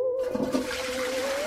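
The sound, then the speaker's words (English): A toilet flushes with a steady, rushing swirl of water, fairly loud, filling the whole brief moment with no one talking over it. “You trying to flush down my friend?”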